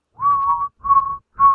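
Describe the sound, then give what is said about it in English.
A man whistles a short tune: three clear, sustained notes, the first two longer and the third cut short, with slight pitch bends and brief breaths between them. “And of course, I think at this point, he's not singing, he's whistling.”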